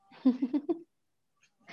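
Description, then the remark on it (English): A voice imitates a cat, giving a drawn-out, wavering meow made of a few quick pulses, fairly quiet, followed by a pause and a faint breathy sound. “Meow.”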